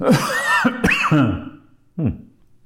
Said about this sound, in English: Little cough this morning.